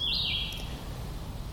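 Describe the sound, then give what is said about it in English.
A single bright, high-pitched bird chirp sounds clearly at the start, then fades, leaving a steady low background rumble with no one speaking. “That bird's kind of annoying, isn't he?”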